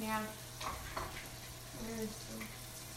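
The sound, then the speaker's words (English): Pork chops sizzle steadily in a hot pan, a continuous crackling hiss with faint murmuring voices underneath. “All right, now I need you to monitor what I'm supposed to do with the pork chops. So I've just put them in here.”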